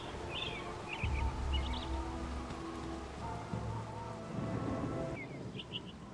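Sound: rain with distant thunder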